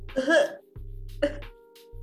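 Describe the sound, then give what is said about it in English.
Someone puts on a forced, deliberate fake cough: a few short, throaty bursts spaced across about two seconds, fairly loud, with voiced humming sounds between them. “I'm going to teach y'all how to fake cough because Dhruvi just can't do it”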